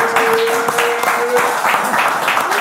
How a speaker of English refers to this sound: I saved his life. Okay. And we can get a round of applause for that?